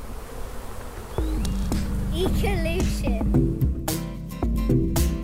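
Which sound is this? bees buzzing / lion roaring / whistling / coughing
bees buzzing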